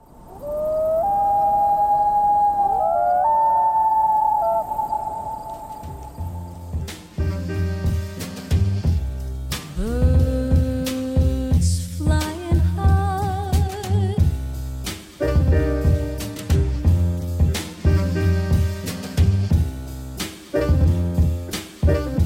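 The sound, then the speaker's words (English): A person imitates a loon's call with a long, wavering, high wail lasting several seconds, after which rhythmic music with a strong bass takes over. “And so I was trying to emulate the call of the loon.”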